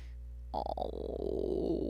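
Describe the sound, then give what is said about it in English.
A golden retriever puppy vocalizes, a low, rough grumbling sound that starts abruptly after a moment of quiet and continues steadily to the end, with no one talking. “I have the cutest puppy of all time. Golden retriever puppies.”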